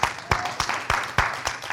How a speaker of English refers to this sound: Somebody, come on, clap with me.